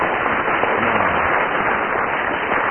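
An audience applauds, a dense, steady wash of many hands clapping at even loudness throughout, with no voices standing out above it.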